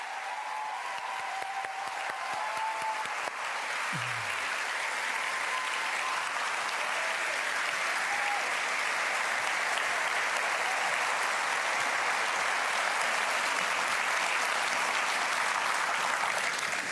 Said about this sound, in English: Let's have a round of applause again for Grace Tame and Rosie Batty.